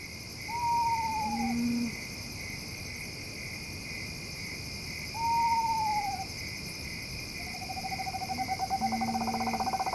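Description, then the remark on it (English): An eastern screech owl gives two descending whinnies, then a long, steady monotone trill, all over a constant chorus of night insects. No one is talking. “Eastern screech owl.”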